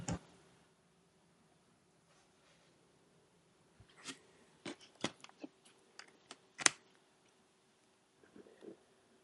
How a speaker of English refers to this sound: Could you mute yourself while you're loudly clicking?